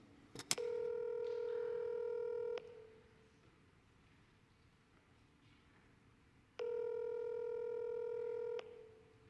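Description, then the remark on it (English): A brief click, then a phone line's ringback tone as a short phone call is placed: two long, steady electronic rings, each about two seconds, separated by a quiet pause, clear with no talking. “Make a phone call, just a short phone call.”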